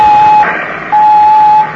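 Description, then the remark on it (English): A radio transmitter's call tone from the radio in Car S1, calling headquarters: two loud, steady, high-pitched beeps, the second one longer, separated by a short burst of static hiss. No one speaks. “Now, hold on just another moment while I use the radio.”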